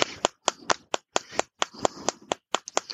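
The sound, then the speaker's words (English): Quick, crisp taps on a point on the head, done to open up a blockage, repeat in a steady, brisk rhythm, about a dozen and a half sharp knocks in a few seconds, some falling in close pairs, with no talking. “And there's a point in your head here I need to tap as well.”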